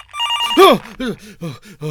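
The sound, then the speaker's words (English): A telephone rings: a steady electronic tone followed by a quick series of repeating warbling chirps, loud and clear with no one speaking. “It's okay. I'll just let go to answer phone.”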